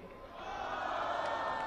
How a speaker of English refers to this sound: he asked the crowd whether or not he should respond to Trump. And of course, most people in the crowd said no